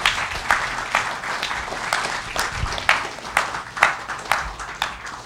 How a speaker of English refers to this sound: Come on, give a clap offering to the Lord.